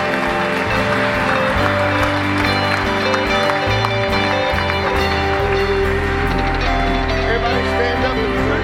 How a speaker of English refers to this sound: We claim victory in Jesus' name. Give the Lord a good clap offering if you would.